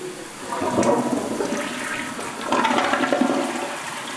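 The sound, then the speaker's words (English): A toilet in a hotel bathroom on the Strip flushes, a loud rushing swirl of water that surges twice, gurgling and draining with no voices over it. “And I'm flushing the toilet.”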